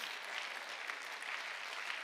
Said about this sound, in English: Oh, clap your hands for a moment.